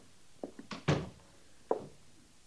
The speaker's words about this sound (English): Close the door, Sergeant. Yes, sir.